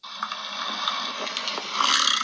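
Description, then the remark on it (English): A buffalo grunt played from an audio recording: a rough, throaty rumble with a purring, snore-like texture, held steadily for about two seconds and swelling slightly louder near the end, with no talking. “Hold on, I have audio of a buffalo grunt.”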